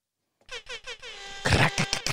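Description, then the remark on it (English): A loud air horn sound effect blares three quick short honks followed by one long sustained blast, ending in a few choppy bursts. “Air horn, please.”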